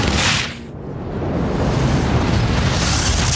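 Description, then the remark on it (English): A sudden loud blast as a red-hot wall bursts across the whole range, then a steady, powerful roaring rush of air as the atmosphere rushes into space, continuing to the end, with no voices. “The wall bursts, and there's a roaring rush of air as the atmosphere rushes into space.”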